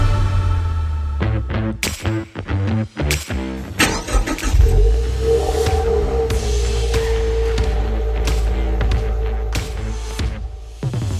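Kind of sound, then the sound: vehicle, car engine revving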